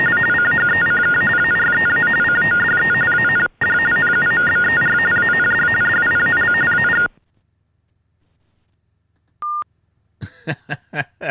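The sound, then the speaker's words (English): Telephone tones for the hearing impaired, following a recorded message that the dialed number is not valid: a long, harsh buzzing data signal with a brief break, then silence, one short mid-pitched beep, and a quick run of chirping tones. No one speaks. “The following tones are for the hearing impaired.”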